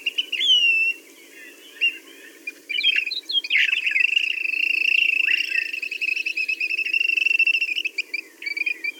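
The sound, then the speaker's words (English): A Say's Phoebe, a small flycatcher, calls in a rapid, complex run of thin whistles and chirps that continues almost without pause after a brief opening note, over a steady low background hiss. “Why don't we listen to it and then talk about the Say's Phoebe?”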